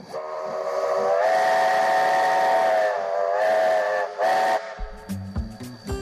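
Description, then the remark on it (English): A steam train whistle blows in long, sustained blasts with a brief pause between them, loud, over a constant hiss of steam, ending in clanking mechanical sounds. It is an excursion train pulling 10 carriages of supporters, leaving Westport in the early evening. “On Friday the 29th, the excursion train pulling 10 carriages full of supporters left Westport in the early evening.”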